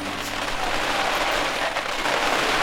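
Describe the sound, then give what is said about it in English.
Heavy rain pours down during a thunderstorm in a dense, steady hiss, loud, with no break across the few seconds and no voices over it. “And sorry, it's like absolutely chucking it down with rain here. I can see it and hear it.”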